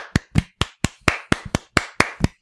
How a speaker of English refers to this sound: I don't think you clap that long.